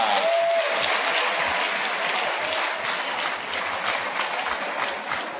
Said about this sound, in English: Tell him, clap your hands for the guy. He's a missionary.